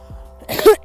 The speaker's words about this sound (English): I promise you I don't have coronavirus, that was just a cough because I'm walking.